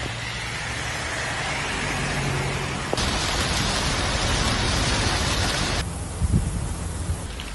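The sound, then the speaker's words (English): Steady, dense hiss of heavy, artificially induced rain pouring down in Dubai, shifting in intensity twice, with a few louder thumps near the end; no voices. “We also have, Dubai is making its own fake rain.”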